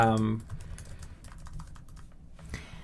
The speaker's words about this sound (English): I'm guessing, I heard you typing, I'm guessing. Sorry, I was looking up something else.